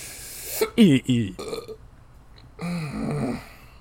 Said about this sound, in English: I got the hiccups now.